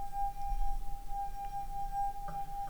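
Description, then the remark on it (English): A steady, pure ringing tone from a wet finger circling a glass rim, held evenly for the whole stretch with a faint wavering edge and no voices over it. “Can I just say I have the unbreakable glass, so I don't think mine's going to be that. Mine's going to get lower.”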